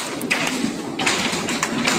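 Hail pelting an old 1970s Chevy truck driving through streets: a dense, steady clatter of sharp taps and thuds over a constant hiss, with a few louder hits standing out at irregular moments. No voices.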